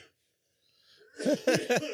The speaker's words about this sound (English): God, dude, that bubbler like grabs you right. Get ready to hear coughing for 5 minutes.